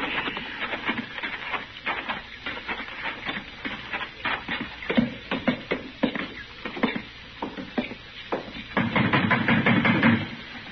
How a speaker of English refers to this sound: be banging on the door.